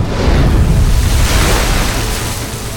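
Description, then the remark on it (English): A loud, steady rush of churning water with a deep rumbling low end as a long, boxy craft breaks the ocean surface in a huge cascade of bubbles and swirling water. No voices. “Finally, the long, boxy craft broke the surface of the ocean in a huge cascade of bubbles and swirling water.”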